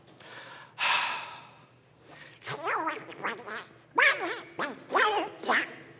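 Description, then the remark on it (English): A voice imitates Donald Duck, sputtering a series of garbled, raspy, nasal quacking bursts with short breathy pauses between them, fairly loud. “Okay, his name is Donald Duck, for those of you who couldn't understand him.”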